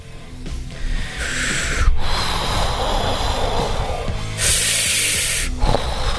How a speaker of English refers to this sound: Oh, my God! Stop. Just your breathing is just irritating. Stop it.